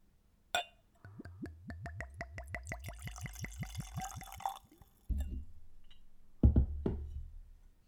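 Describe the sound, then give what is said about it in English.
A 90-proof, light amber spirit glugs steadily from a freshly opened, natural-cork-stoppered bottle into a glass in a quick, even rhythm of bubbly pulses, followed by a couple of solid knocks as things are set down. No one speaks. “Let's go for a pour.”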